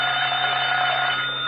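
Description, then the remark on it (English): A telephone bell rings in one loud, unbroken metallic jangle, steady and high-pitched for about a second and a half, with no voices over it. “Oh, that's the phone, Mr.”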